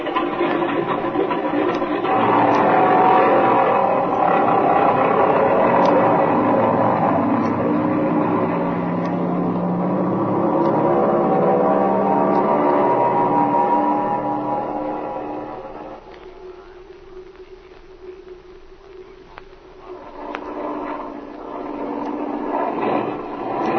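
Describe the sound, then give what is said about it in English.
An airplane engine drones loudly and unevenly, misfiring, its roar faltering and thinning partway through as the tachometer jumps back and forth, then surging back up near the end. No one speaks. “This engine's missing”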